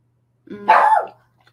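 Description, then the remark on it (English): A single loud dog bark, starting with a low rumbling onset and rising into a sharp, harmonic woof before trailing off into quiet. “Brother, what are you barking on?”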